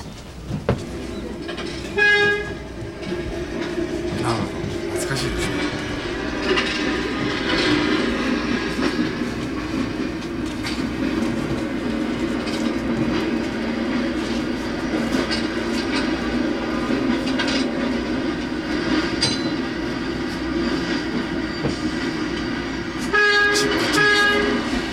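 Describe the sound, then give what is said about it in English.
A train rumbles past steadily for the whole stretch, a loud continuous roar, with a sharp horn blast sounding near the start and again near the end. “if it was on the bus, whatever public transportation he was on, and they play the audio. The train.”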